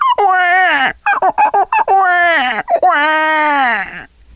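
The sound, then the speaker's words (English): A beatboxer imitates a baby crying with his voice: three loud, drawn-out wails with a bending, falling pitch, separated by a burst of short, choppy sobbing sounds. No other sounds. “Maybe even a baby cry.”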